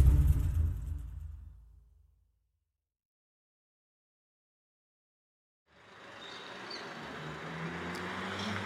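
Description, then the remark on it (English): A deep rumble fades out into a few seconds of silence, then steady Tuesday morning street traffic at 8 a.m. in the German Colony of Jerusalem rises in and holds, a broad wash of passing vehicles with people going to work and school, with faint higher squeaks mixed in. “We're here together in the German colony. A lot of traffic, people going to work, people going to school.”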